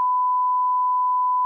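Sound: electronic beep tone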